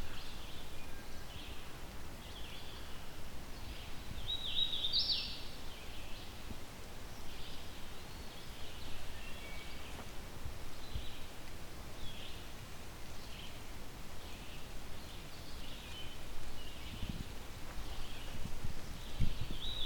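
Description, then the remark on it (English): An unseen male hooded warbler, mostly yellow with a black hood, sings short, bright whistled phrases, repeating every couple of seconds, faint over a steady rustling outdoor background in a Carolinian zone forest, with no one talking. “I still can't see this bird, but mostly yellow, black hood is what you would expect with a hooded warbler male.”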